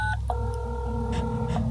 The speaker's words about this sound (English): Okay, so nobody actually answers. That's what sound my little daughter's cell phone makes.